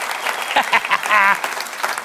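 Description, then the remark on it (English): A large audience stands up and applauds steadily, with scattered cheers and one drawn-out whoop rising above the clapping near the middle, all loud. “That was generous. The money, but standing up and cheering.”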